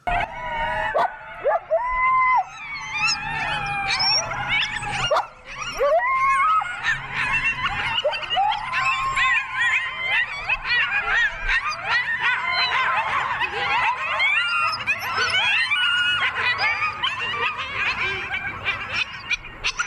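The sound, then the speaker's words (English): A pack of coyotes yips and howls in a dense, overlapping chorus, high wavering cries tumbling over one another continuously for the whole stretch, fairly loud with no talking. “So, yeah, I mean, we love listening to them howl at night and stuff, the yip and yap.”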